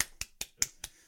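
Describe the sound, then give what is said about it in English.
Five sharp, evenly spaced claps in quick succession, crisp and moderately loud, with no voices, more a brief mock round of applause than a crowd. “Round of applause.”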